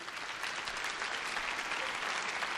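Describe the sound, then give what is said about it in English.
Steady applause from a crowd clapping for the teachers in the room, a dense continuous wash of many hands clapping at once, holding at an even level throughout with no voices standing out. “You can clap for them.”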